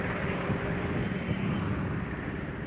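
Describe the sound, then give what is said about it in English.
A steady, loud roar of traffic, with a dense low rumble of engines and tyres filling the whole stretch and no single vehicle standing out. No one speaks. “Yes, now the traffic is going to be so loud you cannot even hear it.”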